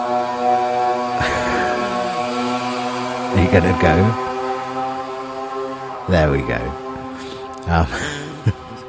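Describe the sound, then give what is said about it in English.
A moped or scooter engine drones steadily with a buzzing, high-pitched whine that holds for several seconds, while a person talks briefly over it in short bursts. “Someone's riding their hairdryer off to the salon.”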